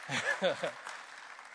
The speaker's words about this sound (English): Praise God. Hallelujah. Thank you. Let's clap well now. Ah, come on.